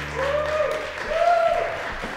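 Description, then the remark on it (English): An audience of the show Long Night applauds Ali Hassan steadily for about two seconds, a dense, even wash of clapping with a few whooping tonal cheers rising above it and a low hum fading early on. “How about another round of applause for Ali Hassan, everyone?”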